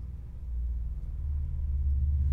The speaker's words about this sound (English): You can hear the car driving by.